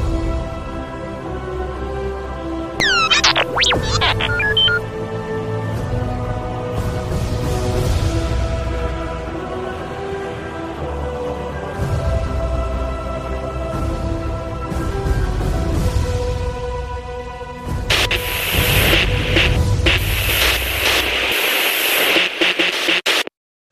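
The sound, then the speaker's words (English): A sci-fi transmission effect: layered electronic hums and quick warbling chirps build up, then a loud burst of crackling static hiss takes over near the end before cutting off. “Ready to send that transmission to Echo Base?”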